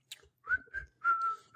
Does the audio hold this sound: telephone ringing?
no